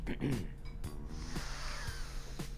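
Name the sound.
sniffing a drink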